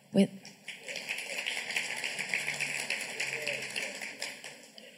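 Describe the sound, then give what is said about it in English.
A crowd breaks into steady applause after a sharp opening knock, the dense patter of many hands holding at an even level for several seconds before starting to thin out. “We clap. Yeah. And then you clap.”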